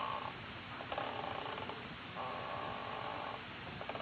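A rocking chair creaks back and forth in a slow, steady rhythm, each long groaning creak repeating about every second over a low, rumbling background.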